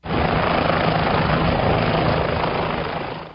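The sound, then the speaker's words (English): A Warrior military helicopter flies by, its loud, steady rotor roar and engine whine filling the air without letup, with no one speaking. “A warrior helicopter, a workhorse of their air cavalry in Iraq and Afghanistan.”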